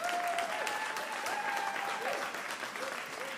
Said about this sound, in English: I really think we ought to applaud our preachers in the house. Can we do that?